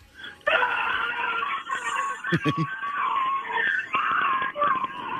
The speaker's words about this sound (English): give me your best cresting over the top of a roller coaster and ready to head down the hill scream. Ready? Go.